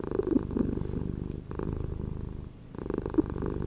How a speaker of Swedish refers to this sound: Vi slutar där med lite kattspinning tycker jag.